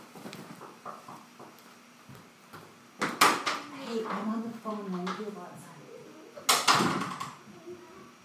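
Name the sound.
knocking on a door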